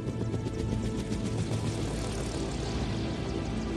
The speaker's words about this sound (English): Check out this remix. This is killer. Little helicopter sound effect.